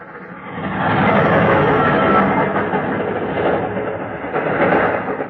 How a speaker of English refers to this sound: It was the train that gave me the idea. I stood there at the deserted level crossing